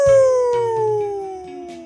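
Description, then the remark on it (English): A single long wolf howl, loud, its pitch sliding steadily downward over about two seconds, with a low rumbling backdrop beneath it. “The Wolf.”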